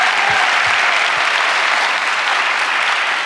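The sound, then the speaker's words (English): At a climate change conference, an audience breaks into sustained applause for the largest investment in history to tackle the climate crisis, signed into law with President Biden, a loud, dense wash of clapping that holds steady for a few seconds without any voices over it. “I know that you and President Biden signed into law the largest investment in history to tackle climate crisis, and it is, that deserves applause.”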